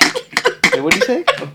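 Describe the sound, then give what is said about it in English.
A loud, rough burp rises out of the throat in a few quick bursts, with a gravelly, voiced croak that wavers in pitch before cutting off. “No, I burped.”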